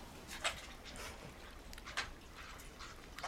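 small dog whimpering

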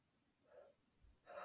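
deep inhale

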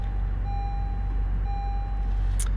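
car being started

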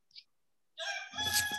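rooster crowing

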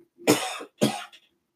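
cough

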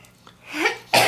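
sneeze

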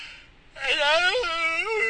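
yawn

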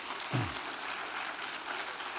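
clapping

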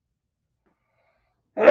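sneeze

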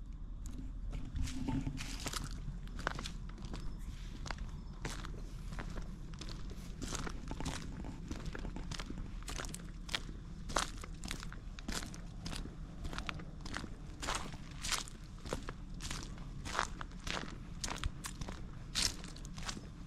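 footsteps walking outdoors

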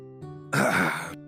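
gulping down water

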